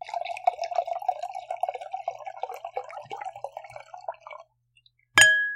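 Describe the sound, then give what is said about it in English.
Wine being poured gurgles steadily for a few seconds, then after a short pause two wine glasses clink together once in a toast, a bright ring that lingers briefly. “Hey, don't cheers yet.”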